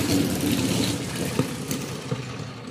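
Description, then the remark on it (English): Motorcycle engines rumble steadily, a continuous low growl with a few brief sharper revs, with no voices over it. “But some cool guys just driving. Cool guys on motorcycles.”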